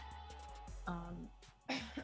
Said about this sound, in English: sorry, coughing.